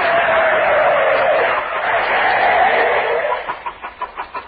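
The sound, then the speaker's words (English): A car brakes hard, its tires letting out a loud, sustained screech for several seconds before breaking into a few short rhythmic squeals as it skids to a stop. “Now, how are the brakes?”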